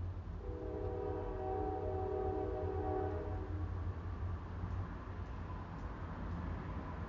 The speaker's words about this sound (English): I just love the sound of it. I never knew I loved the sound of the train so much. I never did. Never did know that. All the while I was driving, though, I used to welcome the train, because when the train came, that meant a break.